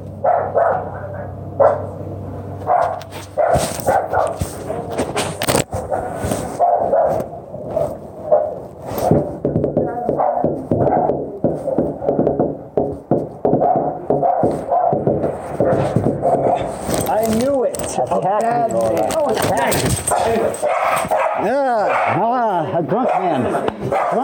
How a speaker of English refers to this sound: All right, here we go. There's the dog.